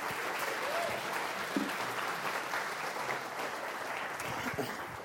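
A round of applause from a group, a steady, dense wash of many hands clapping that holds at an even level for about five seconds, with no voices standing out.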